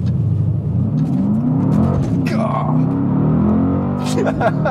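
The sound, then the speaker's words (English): A car engine revs and accelerates hard during a hot lap, a loud roar with rising harmonics that holds steady throughout, while a person exclaims briefly over the noise. “Reward number two, when you have completed your third hour of driving, complimentary hot lap.”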